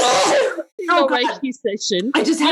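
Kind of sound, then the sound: human body sound, sneeze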